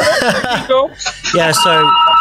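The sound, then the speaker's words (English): A telephone rings with a bright, steady electronic tone while voices talk loudly over it, the ring clear beneath the chatter. “Who's got a fucking telephone? That's a bad phone. That's a hotel room.”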